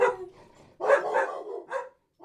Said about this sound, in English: And there's our companions joining us for the show. Thank our dogs. Shout out Henry and Nova.